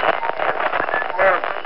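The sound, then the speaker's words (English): Loud, harsh static crackles steadily from a car radio at night in the rain, a dense, band-limited hiss with faint warbling tones drifting through it, like a radio stuck between stations. “So does the radio. Nothing but loud, angry static.”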